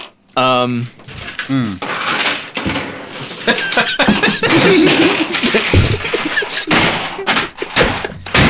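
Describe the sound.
Dice, including a big one, clatter and tumble across a hard tabletop during a game run by a DM, in a burst of quick, sharp knocks and rattles, with excited voices chattering and exclaiming over the noise.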